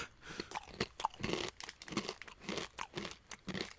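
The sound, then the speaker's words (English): Loud crunching as someone chews Love Corn smoked barbecue roasted corn snack from a small 20-gram packet, with repeated bites and grinding in an uneven rhythm. No one speaks. “And it's a small little 20-gram packet, and it's Love Corn, smoky premium crunchy corn snack, smoked barbecue.”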